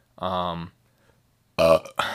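A loud, drawn-out belch rumbles, then after a short silence a second loud, throaty burp bursts out and trails off.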